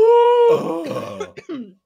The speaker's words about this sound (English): Oh, I gasped and coughed.